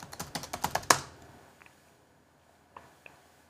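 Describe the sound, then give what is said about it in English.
A quick burst of computer keyboard typing, entering the command sudo apt-get install YubiKey Neo Manager, about eight or nine sharp clicks ending in a firmer keystroke, followed by quiet and a couple of faint isolated taps. “So we can install that by typing sudo apt-get install YubiKey Neo Manager.”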